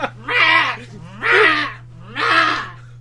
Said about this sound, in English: She squawks.